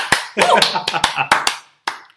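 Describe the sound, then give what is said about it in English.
Brief applause for Lewis Hamilton's second Formula One win of the season: about seven sharp, loud hand claps in an uneven rhythm, some blurring together, then a short pause before one last clap. “And I think that merits an applause.”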